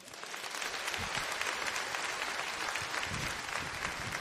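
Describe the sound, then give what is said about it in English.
Sustained applause from an audience giving the Lord a praise clap offering, a dense steady wash of many hands clapping together for about four seconds, fairly loud and even throughout with no talking over it. “Hey, one more time, would you just give the Lord a praise clap offering for what he did?”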